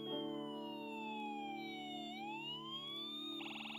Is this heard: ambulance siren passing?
yes